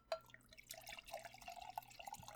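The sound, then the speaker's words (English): Liquid being poured, a steady trickling splash with small gurgles and drips lasting a couple of seconds, fairly quiet with no voices, as a person pours more drink. “Okay, I'll get ready and pour more drink.”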